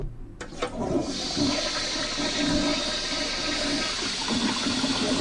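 A toilet flushes with a sudden whoosh of rushing water that holds steady and loud, swirling and gurgling for several seconds with no one speaking.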